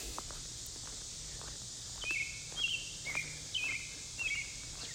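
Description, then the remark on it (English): Birds sing outdoors in York County, Central Pennsylvania, in a series of short, high, chirping notes from about halfway through, over a steady bright hiss of insects or breeze, with no talking. “You can hear some of the birds.”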